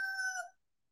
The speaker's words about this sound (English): Let me give him a rooster here, and then we'll get on with the show.